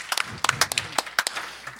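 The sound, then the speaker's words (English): Brief, scattered applause from an audience for those who have read Tolstoy: a couple of seconds of irregular, sharp handclaps at moderate loudness, with no one speaking over them. “I think that deserves impressive applause.”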